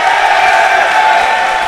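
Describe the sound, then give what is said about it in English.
A steady roar of applause and cheering from a crowd for the picking of Jose Altuve in a draft, loud and sustained throughout, with dense clapping and a bright whistle-like tone riding above the noise. “But now, give me applause because I am picking Jose Altuve.”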